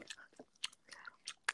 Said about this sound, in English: I'm chewing gum right now. So put a piece in your mouth and let's just do some ASMR quickly.